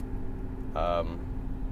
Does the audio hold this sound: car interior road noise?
yes